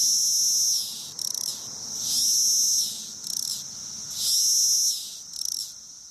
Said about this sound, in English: The infamous sound is basically a cicada serenade meant to attract females, and it can get pretty noisy.